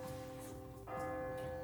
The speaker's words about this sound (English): And you hear the bell ring.